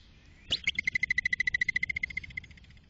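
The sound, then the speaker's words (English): A groundhog's whistling alarm call, made when it gets scared, to warn others: one sharp, rising high whistle followed by a quick, even trill of about twenty shorter high-pitched chirps that fade slightly toward the end, with no talking. “this is what they sound like when they make a whistling noise”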